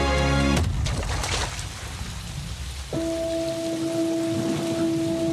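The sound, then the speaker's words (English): Steady, dense rain hisses throughout, fairly loud, after a brief tonal burst at the start. Halfway through, a low sustained droning tone joins and holds beneath the downpour. “And the rain and the camera movement and stuff.”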